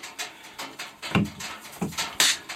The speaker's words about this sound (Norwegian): og så tar jeg klapp nå.